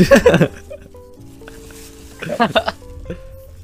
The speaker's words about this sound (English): Are you whistling like through your teeth?